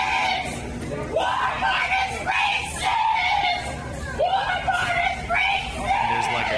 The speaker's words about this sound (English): But no, she starts smacking the officer, throwing merchandise at him, and is tackled to the ground and restrained and starts screaming.